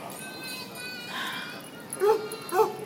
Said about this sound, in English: Ooh, that's a big ass dog. It's an angry wolf dog.